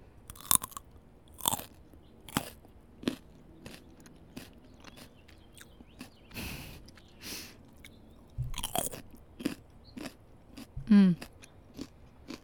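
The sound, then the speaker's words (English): Loud crunching of a raw carrot with hummus being bitten and chewed, with a dozen or so sharp, brittle snaps at an irregular pace and softer mouth sounds between them. “I got this carrot and hummus. Hold on, let's take a bite.”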